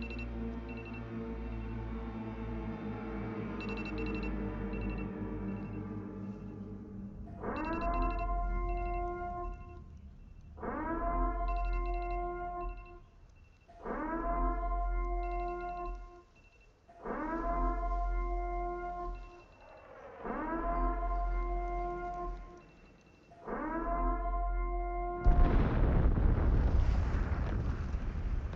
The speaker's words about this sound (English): If they would have ended with a Purge siren, that shit would have been dope.